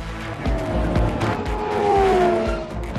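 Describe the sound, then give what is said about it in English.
A race car engine roars steadily for about three seconds, with a high tire squeal rising over it near the middle; no one speaks. “What was that? Brian's race car.”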